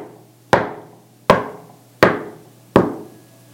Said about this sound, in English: And then knocking on the door comes.